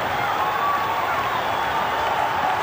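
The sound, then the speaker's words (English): The crowd at Kingsmead cricket stadium, on its feet, roars and cheers after a ball is hit far and high into the crowd, a steady, dense wash of noise with applause mixed in and no break in the din. “Kingsmead on its feet.”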